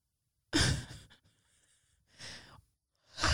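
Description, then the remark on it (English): A big yawn: a loud breathy gust that trails off, followed by two softer breathy exhalations, with no talking. “Did you have to yawn so large?”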